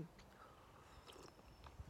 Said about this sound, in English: Sorry, I'm really thirsty. Let me just enjoy this sip. Oh, it's so warm. Feel it going down into my insides.